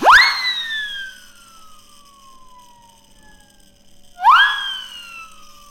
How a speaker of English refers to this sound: Oh yeah, this is a siren whistle.